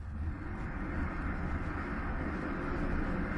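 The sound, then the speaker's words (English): A train rumbles along steadily, a dense, continuous low mechanical roar that stays at an even loudness throughout, with no voices. “Train. That's the soul chugga, train.”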